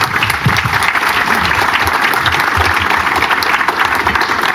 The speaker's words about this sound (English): Cool. Thank you guys so much for your time. Please give our panelists a round of applause.